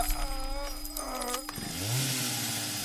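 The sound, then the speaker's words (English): A katana chainsaw with a flamethrower attachment: a small motor buzzes with a steady whine, then cuts to a deeper, louder rev that surges upward and holds a rough, throaty drone. No one speaks. “Ah, a katana chainsaw with flamethrower attachment.”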